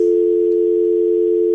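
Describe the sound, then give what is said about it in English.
A steady, unbroken telephone busy signal on a call-in line hums loudly and evenly on its own for the whole moment, with no voices or other sounds. “It sounds like we might be having some phone issues, but keep trying to call.”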